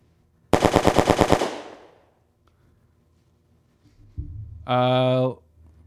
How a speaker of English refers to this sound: Bing, bang, boom. Bing, bang, boom. Which one? Oh. Machine gun.